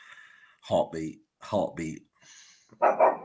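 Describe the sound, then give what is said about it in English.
A dog barks in three short bursts, each a quick double bark, loud and clear with brief quiet gaps between them. “Even the dog agrees.”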